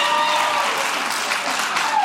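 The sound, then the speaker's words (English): A crowd applauds steadily, a dense wash of many hands clapping at once, loud and sustained for the whole stretch with no voices standing out. “Thank you for clapping for my panties.”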